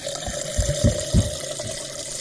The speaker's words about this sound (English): Then you open the rum, and you pour it into the blender like so.